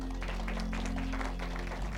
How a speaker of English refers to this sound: Clap for Jesus.